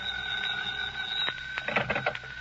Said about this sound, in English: When I got there, the phone was ringing.